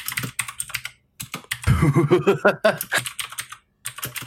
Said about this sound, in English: This furious typing brought to you by people who want to be right.